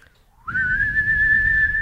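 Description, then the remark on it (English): A single thin, weak, wavering whistle that slides up in pitch and then holds a steady tone for over a second, with a low breathy rumble underneath. “Might have been the weakest whistle you've ever done.”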